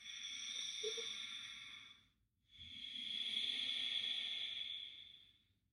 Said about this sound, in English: this is called an oceanic breath because it kind of sounds like there's an ocean within you